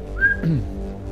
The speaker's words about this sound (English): Did you get my joke, by the way, when I whistled just then when you said Florida?